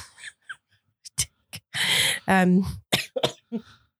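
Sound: a little cough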